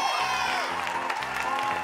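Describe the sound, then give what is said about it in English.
A studio audience cheers and whoops in a loud, steady wash of many voices, with some high shouts rising above the crowd noise for the full two seconds. “I hear studio audience saying something over there.”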